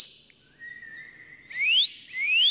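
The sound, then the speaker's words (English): A clear, fairly loud human whistle, made with the tip of the tongue against the roof of the mouth, starting with a steady high tone that drops lower, then two quick rising swoops in a row. No voices, just the whistling on its own. “Tip of your tongue up against the roof of your mouth.”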